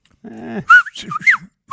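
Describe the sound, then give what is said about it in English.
A grandmother whistles a short run of chirping bird calls into the microphone, quick rising and falling notes imitating birdsong, with no talking. “she claims here that that she can talk to the birds”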